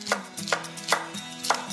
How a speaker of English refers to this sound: All right, got the celery chopped.